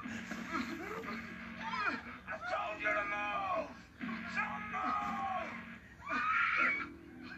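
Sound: woman screaming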